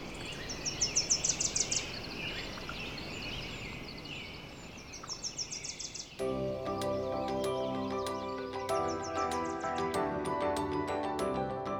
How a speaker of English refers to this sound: You've got valleys filled with bird song.